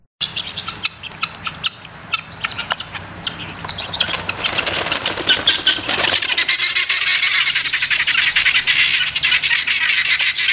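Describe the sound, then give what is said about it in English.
Loud, harsh squawking from several guinea hens out in a park, starting as scattered raspy calls and swelling into a dense, continuous chorus of grating cries, with a steady insect-like buzz underneath. “Now, if you think, I mean, these are kind of out in a park, This audio is guinea hens out in a park.”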